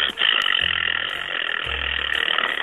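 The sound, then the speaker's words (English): A caller on a radio phone-in makes two low, buzzing raspberry blasts imitating a fart, each lasting under a second, over a steady hissy phone-line hum with no talking. “Okay, was that someone just making a farting noise?”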